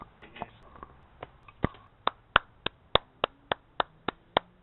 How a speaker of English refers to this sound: No, it's an applause for your opening. I give it about an 8.